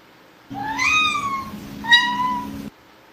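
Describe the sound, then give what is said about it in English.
A black cat meows twice, a long drawn-out call followed by a shorter one, clear over a steady low background hum, with no one speaking. “Wow, that cat is really black.”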